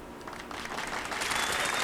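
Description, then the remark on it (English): A burst of artificial canned applause sound effect opening the sports show Downright Sports, dense crackling claps swelling steadily louder over about two seconds, with no voices over it. “The artificial claps are back.”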